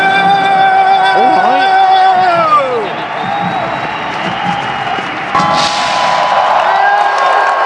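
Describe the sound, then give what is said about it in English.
A large crowd cheers loudly and continuously for Romania's performance, a man among them cheering and waving his flag, with overlapping shouts, rising and falling whoops, and a dense wash of voices that swells again near the end. “I think the man who's still cheering and waving his flag, I think maybe he's dual nationality, I think maybe he's Moldovan and Romanian, I don't know if that's possible.”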